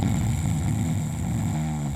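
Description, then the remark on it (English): A loud, rough snoring sound effect, a rattling low-pitched drone that holds steady for about two seconds and deepens into a buzzier tone near the end, with no talking. “The snoring sound effect is back.”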